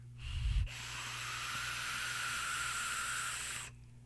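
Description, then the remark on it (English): A hard, steady drag on a vape with its airflow turned about halfway and heavily restricted: a rushing airy hiss lasting about three seconds, with a thin high-pitched whistle running through it, preceded by a brief low bump. “Did you hear the little bit of whistling there? If I drag really hard, you can get it to whistle.”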